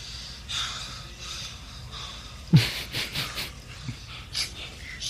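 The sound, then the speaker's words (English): A dog snuffles and snorts, a series of short breathy bursts with one sharper snort near the middle, and no one talking. “I know you were in there, bro. I hear your dog and shit, bro.”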